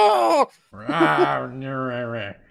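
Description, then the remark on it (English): A voice imitates the cry of an owlbear monster, a rasping hoot: a short, strained, harmonic cry, a brief pause, then a longer, loud, wavering growl-like hoot sustained for over a second. “Okay, so you make the rather loud owly. I don't know what owl bears sound like. I realize horrible hooty noise.”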